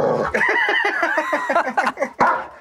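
A dog named Kramer grumbles and growls, a continuous run of short, wavering moans and rumbles that rise and fall, ending with a sharper huff, having just walked in during the High FM morning radio show.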